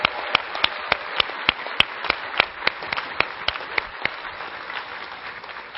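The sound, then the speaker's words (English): A crowd applauds steadily for the part-time interns training in the ministry, a dense wash of many hands clapping at once, with sharper individual claps standing out in an uneven rhythm throughout the nearly six seconds. “So I just want to give a round of applause for all of our interns that are training in the ministry.”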